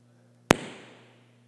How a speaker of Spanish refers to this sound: Hasta cohetes te están quemando para que lo digas.